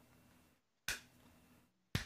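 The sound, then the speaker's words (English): Two sharp, crisp hand claps about a second apart, like a seal clapping, imitating Hulk's clap move in a video game, called the patty cake or the clap. Each is a loud snap that decays quickly over a faint background hiss. “It's called the patty cake or the clap.”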